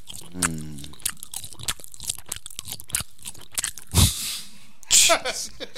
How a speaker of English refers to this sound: It's not bad with a Landoaeger. True that. Yeah, this has got some staying power, this sausagey device thing. Mm. And we'll have a pause now again while we chew our cud.